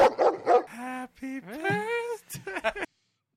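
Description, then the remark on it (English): A dog barks and yelps several times in quick succession, breaking into a drawn-out, rising whine in the middle, loud, before ending abruptly in silence. “play the dog.”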